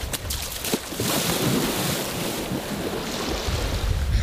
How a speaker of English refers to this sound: Ben just jumped into the water.